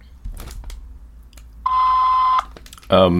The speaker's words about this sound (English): Thank you for calling the Smith Brands Australia Consumer Contact Centre. Smith Brand. We apologise, but all our agents are busy at this time. Please leave us a message after the tone and we will return your call as quickly as possible.